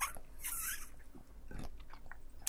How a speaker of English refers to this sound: Oh my God. This tastes really good. Let me have a drink of this. Okay. Sip it loud. There you go.